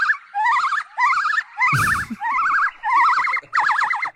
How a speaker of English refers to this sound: A nuisance. We'll just fucking put it like that. Nuisance monkey. Put the fucking cage back on the fucking monkey.